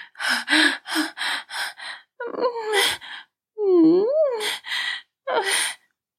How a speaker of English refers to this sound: She panted and whimpered.